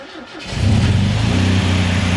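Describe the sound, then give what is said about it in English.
A car engine cranks and catches after a short quiet moment, then settles into a loud, steady low rumble with a droning hum, without any voices. “So I start up the engine, and what happens next absolutely shocks me.”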